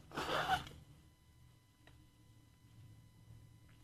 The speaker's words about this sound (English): I'm going to repeat that after I blow my nose. Excuse me.